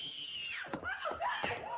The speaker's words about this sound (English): But man, when she screams, it's like nails on a chalkboard. It's horrible.